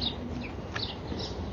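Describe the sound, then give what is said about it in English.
Faint, scattered bird chirps over a steady outdoor hum, a few short high calls spaced irregularly, with no one talking. “The birds, the sky, the clouds, the air, being able to move around and enjoy this nature.”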